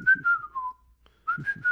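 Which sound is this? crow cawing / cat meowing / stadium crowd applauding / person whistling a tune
person whistling a tune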